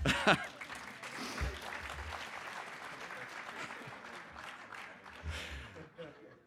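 An audience claps steadily for several seconds, a dense wash of many hands that holds a fairly even level, swells briefly near the end, then tapers off, after the speaker sings part of a gospel song.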